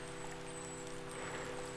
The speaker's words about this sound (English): Some might be put off by such a weather change, but not you, little duck. You are resilient and strong. You don't let something like a little falling rain bother you. As the rain rolls right off your back.